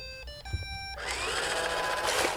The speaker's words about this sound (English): My company, iRobot, happens to be the biggest manufacturer of them. You're making basically vacuum cleaners. Yeah, but they're robotic vacuum cleaners. You press the clean button and you walk away and they clean the house.